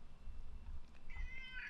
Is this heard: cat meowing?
yes